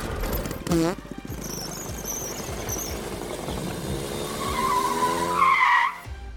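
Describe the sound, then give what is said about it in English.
A bathtub car's tires squeal loudly as its engine revs and it speeds off, the screech rising in pitch over a rumbling motor before cutting out, with a brief voice near the start. “Everyone into the bathtub car. Helmets. Seatbelts. Go!”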